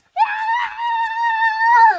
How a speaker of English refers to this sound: Quit screaming.